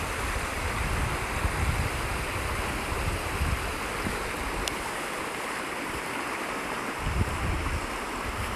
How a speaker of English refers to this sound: And I'm walking down past the stream on the right hand side in the space that we're working. And you can hear the sound of the water as I work my way down over the bridge.